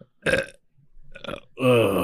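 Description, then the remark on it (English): Three burps in a row: two short, rough belches followed by a longer, louder, more tonal one that drones with a voiced pitch. No talking, with brief quiet gaps between them. “That's what carnival food does to you.”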